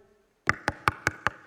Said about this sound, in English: And this one moment, these robbers came to their house. And they knocked on the door.